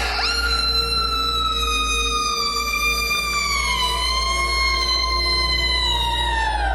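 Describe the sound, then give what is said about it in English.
A loud, high-pitched gargled scream holds for about seven seconds, its shrill wail gliding slowly downward in pitch, with no talking over it. “She opened her mouth as thick black goo oozed out and poured over her chin as she let out a high-pitched, gargled scream.”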